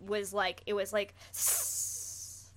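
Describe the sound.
A person imitates a hiss like that of something cringing: a few short voiced sounds, then a sharp, breathy hiss that starts loud and slowly fades out over about a second.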